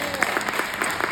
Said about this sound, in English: Clap it up